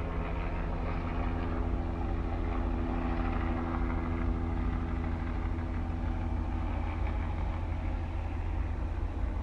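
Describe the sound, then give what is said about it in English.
A helicopter drones steadily overhead, its low rumbling engine and rotor noise holding at a constant, fairly loud level throughout, with no voices present. “The fucking helicopter just destroyed my... Train of thought.”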